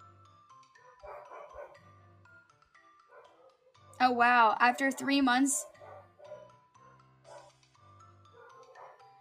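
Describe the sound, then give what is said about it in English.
Dogs bark and yelp in a loud, tight cluster for about a second and a half, while people talk softly before and after. “My dogs are, like, freaking barking.”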